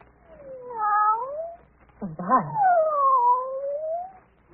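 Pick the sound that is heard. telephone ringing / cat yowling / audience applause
cat yowling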